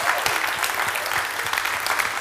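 Sustained applause from a church audience thanking the team: a dense, steady wash of many hands clapping at once, bright and crackly, holding an even loudness throughout with no voices standing out.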